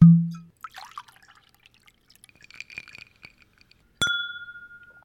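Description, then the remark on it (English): Soft clinks and liquid trickles lead up to one bright, sharp clink of glasses touching in a toast, its clear ringing tone lingering and slowly fading. No one speaks. “Cheers to that.”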